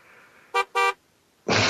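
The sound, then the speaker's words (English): Car horns honk twice in quick succession, two short, loud, bright beeps, followed by a sudden surge of loud, broad rushing noise. “They're beeping for us. They really love us.”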